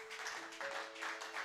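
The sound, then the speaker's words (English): An audience clapping their hands for the Lord Jesus in a dense, rhythmic wash of claps that swells every half second or so, fairly soft, with a steady sustained keyboard-like note humming underneath. “And I want somebody to clap your hands for the Lord Jesus.”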